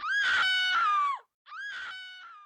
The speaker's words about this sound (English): As soon as we get there, we hear a woman from the bottom of the ravine yelling.